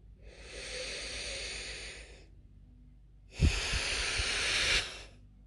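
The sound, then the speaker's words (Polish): A deep breath drawn in and then let out during a breathing exercise, heard as two long, airy hissing phases with a brief pause between them, the exhale slightly stronger and rougher. “I jeszcze 2 wdechy.”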